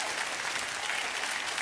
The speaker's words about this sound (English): Would you give the Lord a clap offering?